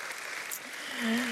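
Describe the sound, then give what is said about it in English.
A steady wash of audience applause for the dads on Father's Day, dense and even, with a brief voice or cheer rising over the clapping near the end. “Round of applause for the dads.”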